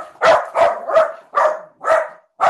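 A dog barks six times in a quick, steady rhythm, each bark sharp and loud, with no talking over it.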